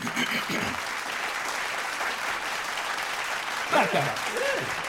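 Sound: applause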